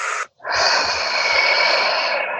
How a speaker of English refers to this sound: Breathe it in. Breathe every last little bit of it in. And breathe it out.